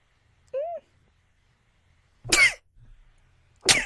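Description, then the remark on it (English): A brief rising voiced breath, then two loud, abrupt sneezes about a second apart, each a sharp explosive burst with nothing else in between. “Sorry, that was a real sneeze.”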